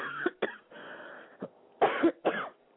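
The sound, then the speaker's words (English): A series of harsh coughs in irregular bursts, some short and sharp, a longer rasping stretch in between, ending with two strong hacking coughs and a throat-clearing quality. “You've passed me the cough now.”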